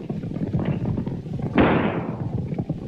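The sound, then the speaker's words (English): A single loud gunshot cracks out partway through, its echo trailing off over a steady, rumbling background of low clatter and commotion, as Jeff's gang fires after men riding away from a house. No one speaks. “Jeff's gang fires after them.”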